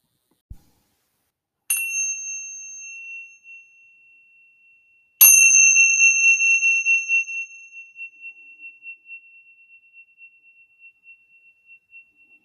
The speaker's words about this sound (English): I start with burning sage to cleanse the area energetically and then light my candle and ring the Tibetan bells.